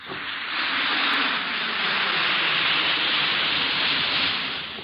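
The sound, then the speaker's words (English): An Alka-Seltzer effervescent antacid tablet fizzes in water, a steady, dense crackling hiss that stays loud and even for about five seconds, with no voices. “Listen to it fizz.”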